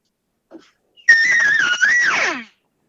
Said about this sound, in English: It'd be that open reed cow call. It would just be that very general.